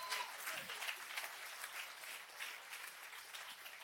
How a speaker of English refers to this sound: If you believe it, would you clap just for a second?